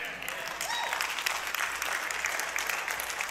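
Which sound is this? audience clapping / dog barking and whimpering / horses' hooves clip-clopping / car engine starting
audience clapping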